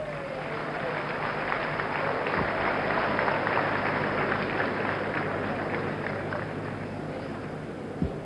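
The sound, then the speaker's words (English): A crowd claps steadily for several seconds for a man being given a Jeep, a dense, even patter of many hands at a constant loudness, with faint voices mixed in beneath the applause. “Let's clap for him.”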